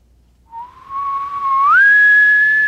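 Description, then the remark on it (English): A person whistles an imitation of a far-off elk bugle: one sustained tone that starts low, holds, then slides up to a higher pitch and grows louder, ending on a steady high note. “Yeah, way off bugle.”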